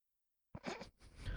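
After a moment of silence, a sudden burst of harsh, breathy noise erupts, then briefly drops out and returns as rougher rustling, like a sneeze followed by a sniffle. No one speaks.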